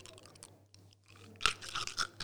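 Three ice cubes rattling in an otherwise empty glass: a quiet start, then one sharp bright clink followed by a cluster of irregular knocks and rattles with a ringing, glassy edge. No voices.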